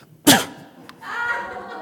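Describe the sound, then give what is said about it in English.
A single sharp, loud sneeze bursts out as a person sneezes into a bottle of water, followed by a brief click and a softer breathy, sniffling exhale trailing off afterward. “I just sneezed in that, right?”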